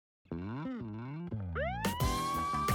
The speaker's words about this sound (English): Should we be worried about that ambulance in the far background? No, does it add to the ambiance? Because I was literally listening to it like perfect. Still loud.